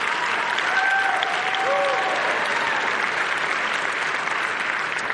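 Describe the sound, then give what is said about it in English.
Steady, dense applause from an audience at a service fills the whole clip, applauding a woman in the second row, a broad hiss of many hands clapping at an even, loud level, with a few faint whistles or voices rising briefly above it. “So, anyway, we're excited, and maybe applause for my wife in the second row.”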